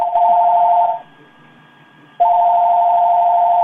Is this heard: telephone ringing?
yes